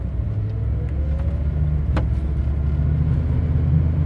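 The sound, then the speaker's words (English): A car engine hums steadily with a low, continuous rumble, a faint rising whine and a brief click partway through, with no voices. “Hear the engine in the background?”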